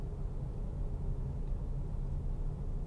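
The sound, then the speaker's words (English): Steady, heavy low rumble of vehicles rolling by, like trucks in passing traffic, a continuous droning roar with no distinct individual pass and no voices. “So all those trucks are going past me right now.”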